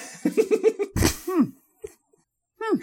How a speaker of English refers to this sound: That sounds just like the cough the guy got when I injected him full of plutonium in Yemen.